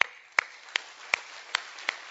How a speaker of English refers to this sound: Now, I'm going to ask you to do something. I will not embarrass you, but stand up where you're at right now if you raised your hand. And clap.